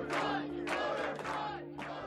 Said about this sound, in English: Clearly, this is a raucous crowd. It was a raucous and confined crowd on the 19th floor, with people trying to get into the room where the canvassing board was going to commence operations.